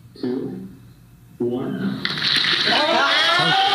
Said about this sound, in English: getting everyone to crack their knuckles at the same time